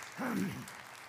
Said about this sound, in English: Would you give the Lord another clap offering? God, thank you.